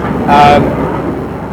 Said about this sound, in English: Really loud aeroplane right now. sounds like a fighter jet.